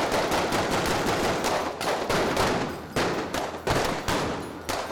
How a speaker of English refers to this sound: Soldiers mobilized to defend the Blue House. The conflict escalated, and soon gunfire was exchanged.